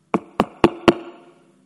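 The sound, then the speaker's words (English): A man knocks four firm times on the wooden door of a house in a steady, evenly spaced rhythm, fairly loud, each knock with a short resonant ring that fades after the last one. “And he knocked.”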